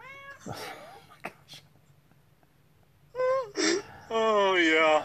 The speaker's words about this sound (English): It's our cat, ladies and gentlemen, our off-screen cat.